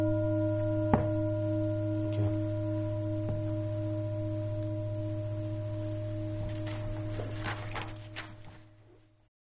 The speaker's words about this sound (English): So, letting us come back into the silence for a moment and present, and then we'll ring the bell and have a little bit of some walking time and then another sitting.